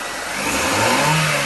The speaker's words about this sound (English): He's on the sound effects. It's a car.